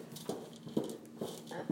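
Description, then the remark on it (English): Feet stomp on a floor four times in a steady rhythm, about half a second apart, each a solid thud with no talking, as a person brings the left foot back and stomps out the legs during a stretching exercise while holding a hoop. “Bring the left foot back and stomp out the legs.”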